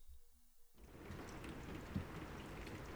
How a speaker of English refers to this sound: Rain.